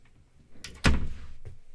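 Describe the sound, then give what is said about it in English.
A door swings shut with a brief scrape followed by a single solid, heavy thud, then a faint softer knock as it settles. “Close the door to my clothfus.”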